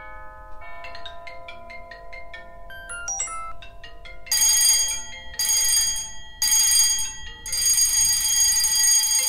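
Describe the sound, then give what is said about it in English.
A quick run of chiming electronic tones and bell notes, then four loud bursts of harsh, insistent alarm-bell ringing separated by short pauses, with no voices; the last bell is a plantation bell from the southern United States. “Our lives are regulated by bells and tones that tell us what to attend to and when to start one task and stop another.”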